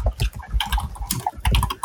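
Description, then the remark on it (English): Rapid, frantic typing on two computer keyboards, a dense flurry of clicking keystrokes with no voices, the tapping overlapping. “Everyone can hear the frantic sound of typing on two keyboards.”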